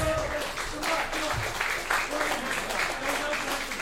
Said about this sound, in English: Come on, everybody. Keep your hands going together. Come on.